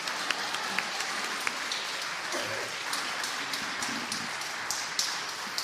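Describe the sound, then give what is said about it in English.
A church audience breaks into steady, dense applause for a man of the church, many hands clapping together, sustained evenly for several seconds with no one speaking over it. “He's just, everybody, just clap for Julian.”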